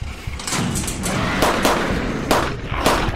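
A rigged bomb explodes with a steady roaring rumble, broken by several sharp, loud booming cracks at uneven intervals. No one speaks.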